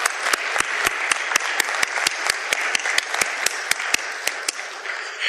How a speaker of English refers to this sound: Give everyone a round of applause, folks.